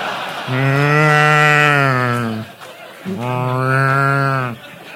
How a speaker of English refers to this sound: I mean, other than one of those little moo cows that when you turn it